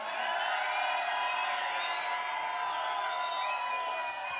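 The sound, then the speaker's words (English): A large crowd at a live show in Nashville cheers and roars continuously for several seconds, a loud, steady wash of voices with high whoops and whistle-like tones riding over the top. “Would you like to let them know what it sounds like in Nashville?”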